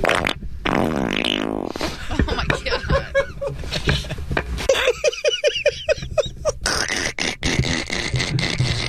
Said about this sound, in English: laughing at his own fart.